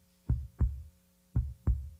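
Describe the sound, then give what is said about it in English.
A low heartbeat thumps twice in a steady lub-dub rhythm, each double beat deep and muffled against near silence, with no voices. “I can still hear your heartbeat, thus saith the Lord.”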